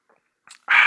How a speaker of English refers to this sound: Take a sip here. My throat's getting dry already. It's been this long since I've talked this much.